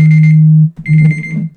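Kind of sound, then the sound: household object, alarm going off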